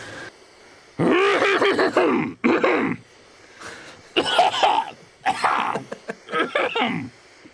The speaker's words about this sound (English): This is cough number one.